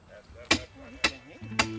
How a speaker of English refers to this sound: The men hammer the sign at the top of the driveway, well within sight of Seal's RV, and obvious to any passerby.